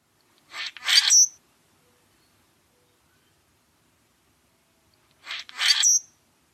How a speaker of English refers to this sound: So common grackle, obviously it's named the common grackle because it's just that. It's common. You can find them everywhere and in huge numbers. We'll play that call for you one more time.